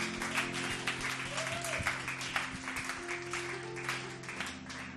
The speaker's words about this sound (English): Clap your hands and bless the name of Jesus.